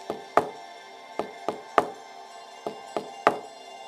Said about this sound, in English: A woodpecker is a type of bird that knocks holes into the tree and then it lays its nest inside of the hole where it's all safe.